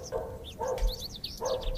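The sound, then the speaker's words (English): A dog barks three times, the short yelps spaced unevenly, while birds chirp steadily over a low outdoor rumble. No one speaks. “We haven't seen a dog yet, but we keep hearing in the background.”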